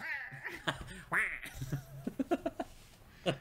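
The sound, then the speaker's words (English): A duck quacks loudly and nasally several times: a few drawn-out calls, then a quick burst of short, choppy quacks and one last honk. “He's just walking down the street, and you just hear this hypersonic duck go, wah!”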